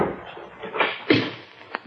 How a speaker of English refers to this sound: I went on ahead. It was about 11 o'clock when I knocked on the door.